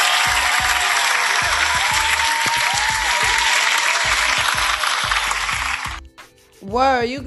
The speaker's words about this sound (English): So, yeah, round of applause for you guys in all sincerity. Like, sincerely.